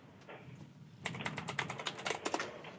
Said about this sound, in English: What's that noise I can hear, ma'am? That's my printer going off.